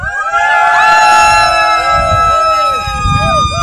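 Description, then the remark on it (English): Two people at the Parkrun Adventurers listener meetup at Shellharbour cheer loudly on a Saturday morning, with high whooping voices that swoop up and down in pitch and overlap continuously for a few seconds, sounding like a larger crowd. “And thank you to those two people who just made that crowd sound like there was a lot more of you.”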